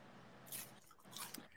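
Crisp crunching as someone chews on a cone, two bursts of crackly bites about half a second apart, with no talking.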